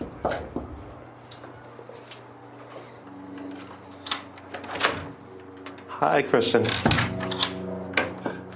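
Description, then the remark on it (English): Several sharp, irregular knocks on a woman's front door by a CBS News 48 Hours team, with a short spoken greeting and a low steady hum in the background. “But that's something she didn't want to share with us when 48 Hours knocked on her door.”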